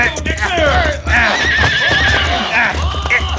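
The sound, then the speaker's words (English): A horse whinnies loudly, its shrill neigh wavering over several seconds, while hooves clip-clop underneath and voices call out in the background. “All right, come down off that horse”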